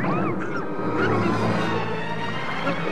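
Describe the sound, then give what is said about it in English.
A hideous swamp serpent swallows R2-D2 with a deep, wet gulp amid a thick, rumbling creature growl, with brief rising squeals early on and a steady, loud churn throughout. “With one great gulp, a hideous swamp serpent swallows R2-D2.”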